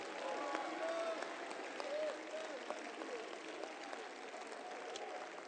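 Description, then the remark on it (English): An audience claps and shouts in praise to God for about 15 seconds, steady dense applause with scattered voices calling out over it, continuous and fairly loud throughout. “If you believe that with me tonight, take 15 seconds, clap your hands, all ye people, and give God a mighty, mighty shout of praise.”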